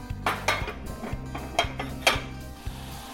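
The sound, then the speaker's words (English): Metal pot and utensils clatter in a handful of sharp, irregular clanks and scrapes as a pot is set to come to a boil while cooking, with a low steady hum running underneath and no one speaking. “Okay, I'm going to bring this to a boil.”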